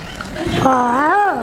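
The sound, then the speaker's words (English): A daughter imitates a lion's roar with a loud, drawn-out voiced growl that wavers up and down in pitch for about a second, after a brief breathy lead-in. “That's not a lion. That's my daughter.”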